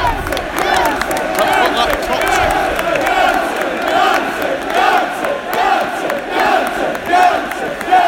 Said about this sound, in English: Paul Pogba encouraging the United crowd to sing louder.